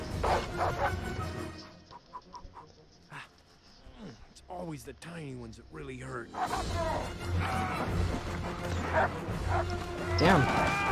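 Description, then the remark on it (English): An alpha wolf barks and snarls in sharp bursts over a busy background, with a louder flurry near the end, while a person talks over it. “Oh, crap, it's an alpha wolf.”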